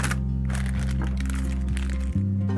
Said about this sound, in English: So I have a large piping bag here that I've put into a cup. I'll scrape the batter into the piping bag.